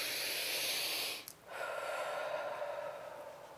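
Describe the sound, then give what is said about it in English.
Two loud, airy breaths with a brief pause between them: a rushing breath followed by a slightly lower, raspier one that fades gently. No talking. “Is that more of a living prayer, what the breath you just heard?”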